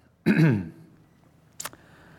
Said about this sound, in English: There we go. As soon as I clear my throat, the mic works. It's like a clap-on light.